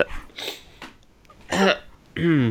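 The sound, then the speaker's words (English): A few short bursts of coughing and throat clearing from a person with almond stuck in their throat, harsh and raspy with a voiced edge, separated by brief pauses, the last two louder than the first. “I thought I was going to need to apologise for coughing, but...”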